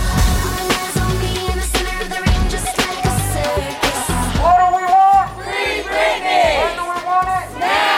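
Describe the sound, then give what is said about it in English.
A loud crowd of protesters outside the courthouse in downtown Los Angeles, supporting a pop star fighting over who will control her life, chanting over a steady, thumping drum beat, with voices rising and falling in a sing-song rhythm during the second half. “You can hear them protesting behind me as the pop star fights for who will control her life.”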